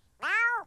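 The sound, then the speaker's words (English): A person imitates a cat's meow with a single short, rising-and-falling harmonic tone, loud, standing alone without other talk. “And then, so this is a cat.”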